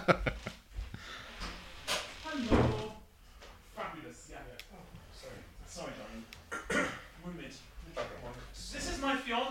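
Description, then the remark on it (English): A front door opens and shuts as a man from a delivery company arrives, with a few sharp knocks and thuds, while muffled voices murmur throughout in the background. “A man from a delivery company just arrived at the front door.”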